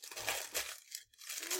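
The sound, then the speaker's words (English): Wrapping paper on a large gift crackles and rips open in two bursts of harsh, hissy tearing separated by a brief pause. The crinkling is moderately loud and no one speaks. “It's your turn to open gifts.”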